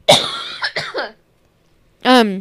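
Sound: coughing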